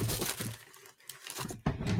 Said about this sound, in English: This is quality entertainment, kids. When you can hear drawers opening and shit moving around. This is why people tune in.